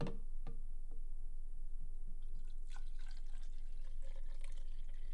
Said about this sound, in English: I'm gonna pour myself another drink.